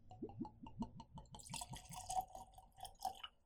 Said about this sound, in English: So I'm going to pour that into my glass.